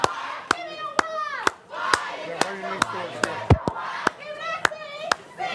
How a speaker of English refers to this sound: And then he's leading this group of people, like, clapping and cheering while walking. It's just so much at once.